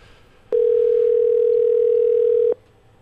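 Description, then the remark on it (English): A single ringback tone on an outgoing phone call to a new number, the caller's son in Pensacola: a steady, fairly loud electronic hum lasting about two seconds, starting and stopping abruptly, with quiet line hiss before and after. “Two ringy dingies. Three ringy dingies.”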